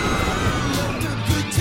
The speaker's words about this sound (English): And 4% while you're screaming at the amusement park.